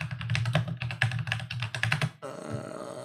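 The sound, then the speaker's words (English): Rapid, clacky keystrokes on a mechanical keyboard, fairly loud, in a busy irregular burst that stops abruptly just after two seconds, leaving only a faint hum. “Listen to that clear gamer, the mechanical keyboard. Clack, yes. Clackety clack.”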